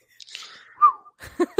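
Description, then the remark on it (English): A person whistles along to the end of a show's theme tune, a short melodic phrase that glides downward in pitch, clear, followed by a brief burst of voice at the end. “Is that I always do the whistle along with at the end of it.”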